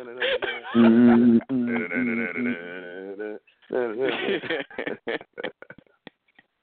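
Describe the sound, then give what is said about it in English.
An exaggerated, drawn-out throat clearing: loud, groaning, bleat-like vocal tones that waver in pitch for a few seconds, followed by a string of short, choppy rasps and grunts trailing off. “Let me clear my throat.”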